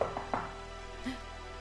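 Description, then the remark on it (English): Three quick, fairly sharp knocks on a door in a short rhythmic burst, followed by a brief softer thud, all over a low steady background hum. No voices. “No, we should tell them someone's at the door.”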